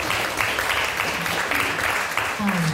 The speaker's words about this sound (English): Yeah, that's right. He deserves an applause.